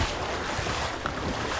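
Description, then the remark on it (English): A water splash blends into a steady, full rush of churning water, like surf or a boat's wake, loud throughout with no voices. “And then splash.”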